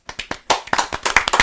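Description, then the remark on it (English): Several pairs of hands clapping at once on cue for a timed ten seconds, a dense run of sharp, overlapping claps at a quick, uneven pace, loud and with no voices over them. “And now the 10 seconds of clapping.”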